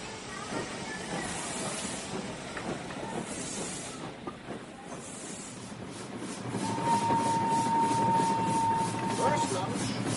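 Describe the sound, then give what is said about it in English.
A crowded passenger train rumbles steadily along the rails with a broad hiss and faint rhythmic clatter, swelling louder midway as a thin steady whistle-like tone sounds above the noise. “Oh, the train is pretty crowded.”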